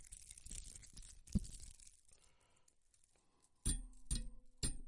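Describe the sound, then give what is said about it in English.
Metal keys jingle and rattle, first a busy shaking cluster, then a few sharp clinks with a brief metallic ring after each. No voices. “You heard every, you heard every clink, clink, clink, clink, clink, ching, ching, ching keys all the time.”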